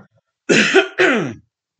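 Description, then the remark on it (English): A man clears his throat in two rough, raspy bursts, the second slightly longer, with a gravelly low rumble and harsh breathy noise, loud against silence and no speech. “Isn't that a pain in the arse when you try and do a podcast and you get a frog in your throat?”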